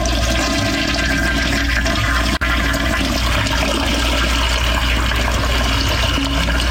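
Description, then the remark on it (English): A loud toilet flush roars steadily with rushing, gurgling water for several seconds, with a brief cut partway through and no voices. “We're going to play a sound effect from a toilet recorded by one of the three of us.”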